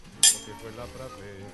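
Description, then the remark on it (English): A single bright clink of glasses of port touching in a toast, sharp with a brief ringing tail, followed by quiet murmur and faint voices. “Cheers.”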